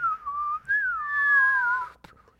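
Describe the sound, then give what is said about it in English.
A person whistles a falling-bomb imitation: a clear tone that briefly breaks, then glides slowly downward for over a second before cutting off, followed by a faint click. “That just sounds like every cartoon bomb I've ever heard.”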